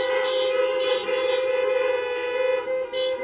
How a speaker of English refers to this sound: There may be some of the others that are here today for the first time. We welcome you. Come on, let's welcome them with a horn honk.